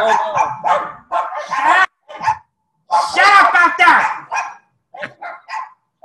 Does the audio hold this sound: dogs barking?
yes